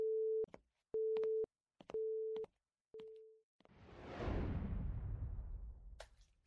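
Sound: phone call hung up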